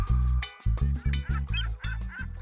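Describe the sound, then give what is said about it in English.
A swan honks in a rapid run of about eight loud, brassy calls, clear, with brief gaps between each honk and no talking. “Hi, Mr. Toucan. Hello, Mrs. Swan.”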